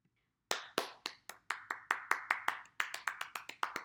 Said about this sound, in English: That is my round of applause for myself for coming back.